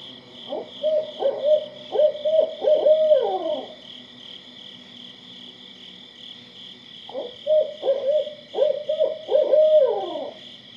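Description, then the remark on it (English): Two rhythmic series of hooting owl calls from a barred owl, each ending in a drawn-out descending hoot, separated by a pause, with a steady high insect drone running underneath throughout. “barred owls are not as fully nocturnal as many owls”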